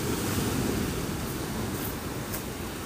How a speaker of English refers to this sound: Maybe I'll just get closer to the waves. Possibly take clown nose off and let the noise in.